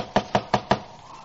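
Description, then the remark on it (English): Four firm knocks on the wooden door of a boarding house in a quick, even rhythm, clear, followed by a moment of quiet room tone. “Knock again.”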